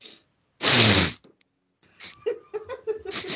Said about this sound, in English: Just different sniffs.